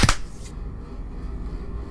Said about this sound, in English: Let's do the clap real quick.